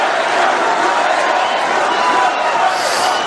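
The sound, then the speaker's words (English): A large crowd of thousands at a Donald Trump rally in Michigan cheers and roars continuously, a dense, loud wash of many voices that holds steady for the whole stretch with no single speaker standing out. “My, this is a big crowd, and I want to just say hello, Michigan.”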